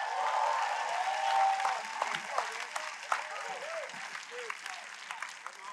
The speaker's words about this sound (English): If you believe that, give the Lord a clap and a shout.